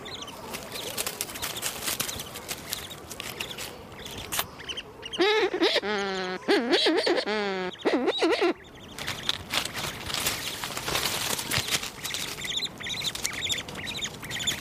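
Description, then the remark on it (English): A seabird passes by, giving a few harsh, bleating, wavering calls in the middle, set against a steady rush of wind and colony noise. “This is another bird just passing by.”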